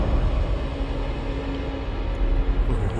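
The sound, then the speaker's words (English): A steady, heavy rumble of a train rolling along rails, loud, with a continuous low roar and faint tonal hum throughout; no voices. “Listen to those sound effects.”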